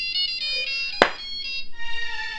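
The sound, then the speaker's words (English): A phone ringtone plays a movie theme: a bright, tonal melody with sustained electronic notes, briefly interrupted by a sharp click or tap before the tune continues at moderate volume. “You can buy an app where you can pick your ringtone?”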